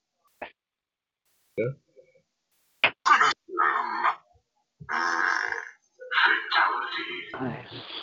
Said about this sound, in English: And that was done in Mortal Kombat style, too. He used the dreaded fart.